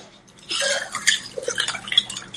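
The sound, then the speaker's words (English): Schweppes Indian Tonic Water is poured to top up a glass holding ice, lime wedges and Gordon's gin for a gin and tonic: a steady gurgling pour with crackly fizzing that starts after a brief pause and runs to the end, with no talking. “Then you get your Schweppes Indian Tonic Water and just top up the glass.”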